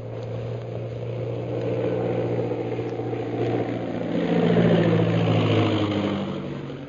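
A small scout plane's engine drones steadily as it circles in to land on a parade ground, its pitch wavering as it swells louder around the middle and then eases slightly, as if passing overhead. No voices.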